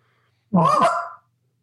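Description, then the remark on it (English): A handheld goose call is blown once, a drawn-out honking moan that breaks upward into a short cluck, loud and clear with no talking around it. “Now follow a moan with a cluck.”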